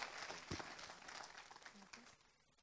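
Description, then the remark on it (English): A crowd applauds steadily to encourage a group about to speak, with dense overlapping claps and a few scattered voices mixed in, the clapping thinning out and fading near the end. “Give them a big clap offering.”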